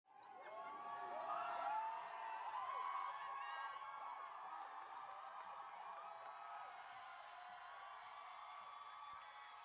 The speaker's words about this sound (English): Crowds of people cheering the abortion vote in Ohio this last week. Passed with 60% of the vote.